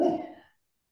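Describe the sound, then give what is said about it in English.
A dog lets out a single short, sharp bark that cuts off quickly into silence, with no voices around it. “But at the end of the day, man, my damn dog.”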